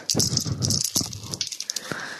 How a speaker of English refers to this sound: Okay. I have here my D&D dice. All right.